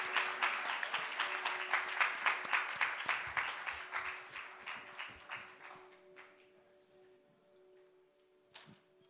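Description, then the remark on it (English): A crowd claps for a group of kids in a dense burst of applause with a steady, almost rhythmic pulse, tapering off after about six seconds and ending with a few scattered claps. A faint steady hum runs underneath. “Have a round of applause for our kids.”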